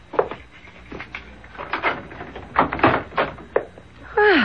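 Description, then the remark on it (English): A series of sharp clicks and clunks as a complicated lock is worked and a door is unlatched and pulled open, ending with a brief creaking sweep. “You certainly have a complicated lock on that door.”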